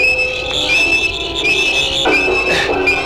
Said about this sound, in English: Blast, the door's closed. Sonic screwdriver.